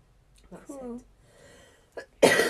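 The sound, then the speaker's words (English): A brief vocal sound is followed by a short catch and then a loud, harsh cough burst near the end, from a speaker running out of breath while talking. “I'm coughing so much because I'm running out of breath when I'm talking.”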